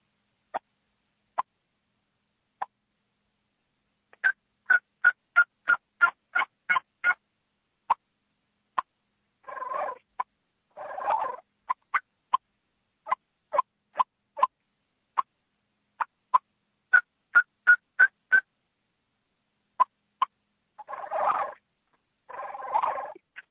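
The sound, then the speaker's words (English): A hand-operated turkey call imitates a hen: crisp single clucks, quick runs of short notes and soft yelps, broken by a few low rolling purrs. The sounds are clear and moderately loud, with no talking. “I'll do a little purring and clucking, and I'll just do some plain yelps.”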